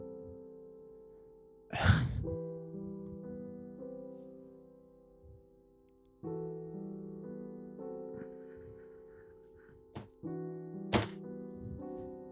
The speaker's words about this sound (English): Kind of slams his fist on the desk for a second.